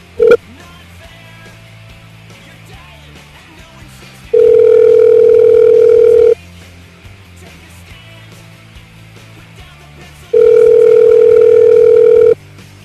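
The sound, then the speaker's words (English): A telephone tone sounds on an outgoing call while calling someone back: a short beep, then two long, steady buzzing tones about two seconds each, separated by a quiet pause. No one speaks. “I'm trying to call them back just to see if it might work this time.”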